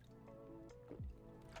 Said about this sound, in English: Let me take a sip of this water real fast.